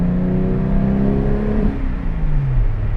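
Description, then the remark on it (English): A Porsche 991 GT3 Touring's engine revs hard, its loud, sustained tone climbing and then dropping in pitch as the throttle rises and eases off, while the car is driven on a road with both windows open; no talking. “Porsche 991 GT3 Touring”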